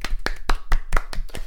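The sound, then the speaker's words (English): A light round of applause: about seven crisp, evenly spaced hand claps in quick succession, moderately loud, with no voices over them. “We're going to give her a bastard point, but then I think a very light round of applause, because I think that's a very good burn.”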